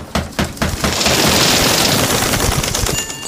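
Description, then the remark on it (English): Windows of a house being smashed: a few sharp, loud crashes, then a sustained bright wash of shattering, tinkling glass that continues to the end, with no voices. “Get to the windows. Sorry, Mr. Allen, I have to break these.”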